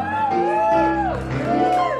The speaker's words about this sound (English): Did you hear that? That's a huge crowd, standing room only.